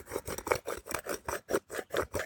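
An herb grinder grinding in quick, steady rhythmic bursts, about four per second, each a gritty rasping crunch at moderate volume, with no voices.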